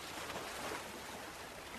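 A steady, hissing wash of ocean surf fills the moment, broad and continuous without distinct breaking crashes, with no voices present.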